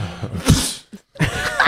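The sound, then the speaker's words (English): A person acts out a loud, exaggerated sneeze into someone's hand: a sharp breathy burst, a short silence, then a second voiced, spluttering tail. “I sneeze into her hand.”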